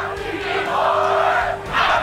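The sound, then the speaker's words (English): About 80,000 Clemson football fans, a sea of orange, scream and roar at Death Valley stadium in a dense, continuous wall of noise, swelling louder near the end with no individual voices standing out. “80,000 fans, you know, screaming, you know, see all this orange out here.”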